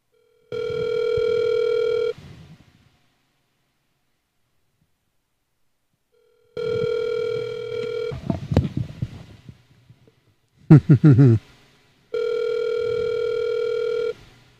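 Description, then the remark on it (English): Three long electronic ringback tones of an outgoing phone call repeat with long pauses between them, loud and steady, while brief crackling clicks and line noise break in after the second ring, before the call reaches voicemail. “Let's try the 740 number. Let's see if this shit works.”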